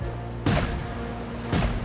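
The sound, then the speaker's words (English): Two heavy cannon blasts roughly a second apart, volleys from the guns of the ship Royal Rover firing on a fort at night. Each is a sharp, loud boom that trails off into a low rumbling decay, with no voices present. “Volleys of cannon fire send the fort up in smoke.”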